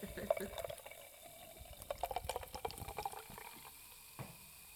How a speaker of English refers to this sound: Okay, ASMR moment. I'm going to open my La Croix. Ooh. Snap. Ooh, that sounded so good. Okay, we're going to pour it now. ASMR moment. I'm dripping it on my dog.